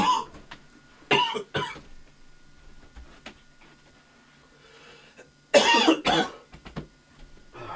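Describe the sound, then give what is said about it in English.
A person coughs in harsh bursts: a couple of quick coughs near the start, then a louder, extended coughing fit after a pause, with no talking. “I need to cough.”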